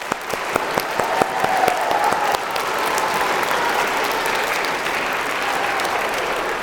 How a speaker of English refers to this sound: So let's give your teachers a round of applause.